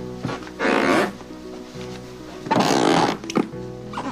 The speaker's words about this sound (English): How about squeaky floorboards driving you insane?